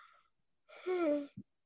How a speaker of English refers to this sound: Excuse me, I'm so sorry for yawning. Y'all, we're on the East Coast, so it's like after 1 a.m. here for us.